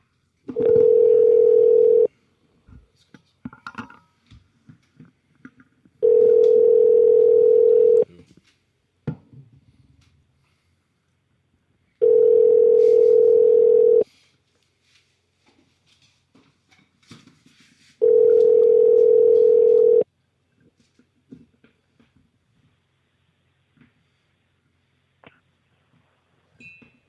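A steady telephone ringback tone sounds four times as a call connects, each burst about two seconds long with roughly four-second silences between, clear, with faint clicks in the pauses.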